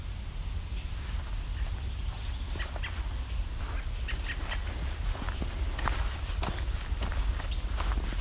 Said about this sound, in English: I may have to look up that sound later. Don't often encounter brown thrasher or cuckoo that get that annoyed, so I don't know that call.